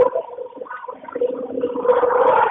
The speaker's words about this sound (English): Are you on a train? I am on a train. That is incredibly loud. Wow. Yes, it is. Usually it's not that loud. It's pretty bad.